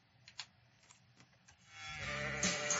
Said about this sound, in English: Sounds like goats to me.